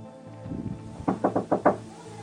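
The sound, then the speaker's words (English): The door of a flat being smashed down by officers serving a warrant: five heavy, rapid thuds land in a quick rhythm, loud, after a brief low rumble of movement, with no voices. “gives the signal, and they smash down the door.”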